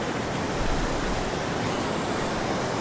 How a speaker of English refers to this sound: Recording. Just soundscapes from the ocean.